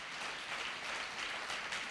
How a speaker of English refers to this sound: Now clap your hands, everyone, for the Lord.